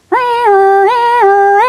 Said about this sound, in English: Oh no! We had an old VW truck with an old car alarm that malfunctioned at the most inopportune moments. And this was definitely an inopportune moment.